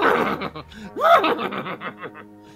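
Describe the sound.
A person voices a quick, wavering horse whinny with rising and falling pitch, fairly loud, breaking into laughter-like sputters toward the end.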